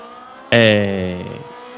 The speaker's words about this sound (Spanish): La verdad es que fue muy divertido, porque el coche, bueno, es un grupo 2, suena muy bien.